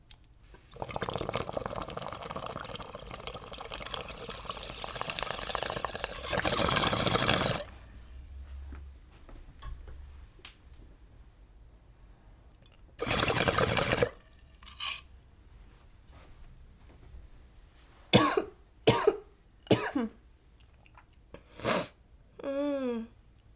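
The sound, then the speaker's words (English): A long stretch of steady water bubbling from a bong draw of banana punch flower, the first of the day, followed by a couple of heavy exhales and then a run of four or five sharp coughs. “First rip of the day always kills me, and I feel like because I'm dabbing so much, my tolerance to flower is going down, but my tolerance to dabs are going up.”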